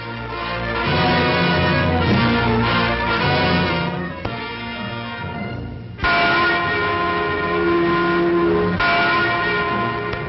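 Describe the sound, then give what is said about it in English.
The Freedom Bell in West Berlin, a large, deep bell, tolls repeatedly in 1962 on the first anniversary of the Berlin Wall, with long, overlapping resonant rings, each strike swelling and humming loudly before the next, heard alone without voices. “Freedom Bell in West Berlin tolls in sympathy for East Germans on the first anniversary of the Wall of Shame that holds them prisoners.”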